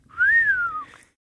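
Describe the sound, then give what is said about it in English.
A single clear whistle from an audience member during a stage performance, a smooth tone that rises slightly then glides gently downward, lasting under a second against a quiet background. “And somebody whistles.”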